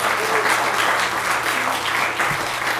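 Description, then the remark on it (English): An audience at Weird Wednesday at the Joy Cinema and Pub claps steadily for itself for coming out, a dense, continuous wash of applause that stays loud and even throughout, with faint crowd murmur mixed in. “Please give yourselves a big round of applause for coming out.”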